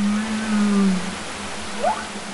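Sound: humpback whale song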